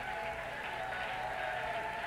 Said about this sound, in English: You may go down clapping. Would you once again clap your hands, and would you lift your voice of praise to him?